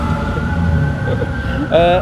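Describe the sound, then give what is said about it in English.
A fire engine siren wails in Los Angeles beneath a low rumble of background noise, its rising harmonic tone swelling loudly near the end as the vehicle approaches. “And cue fire engines.”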